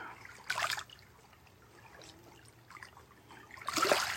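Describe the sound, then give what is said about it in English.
Gentle waves of Kitchigami, the big lake, wash against the rocky shore, with two soft surges about three seconds apart and a quiet watery trickle between them, with no voices. “So much wisdom held in the sounds of the waves.”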